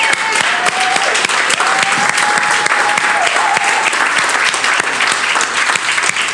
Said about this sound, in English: Grown men ages 35 to 60. Can you do me a favor and stand up? Let's give these grown men a big round of applause.